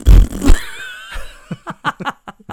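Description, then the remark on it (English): A loud mouth raspberry mimicking a fart: a wet, sputtering low blurt that fades into a buzzy drawn-out tail, followed by a run of short bursts of laughter. “That is the strangest noise that I've ever made when trying to pull a raspberry.”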